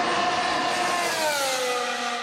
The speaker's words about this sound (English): That is a current F1 engine. And the current F1 engines are V6.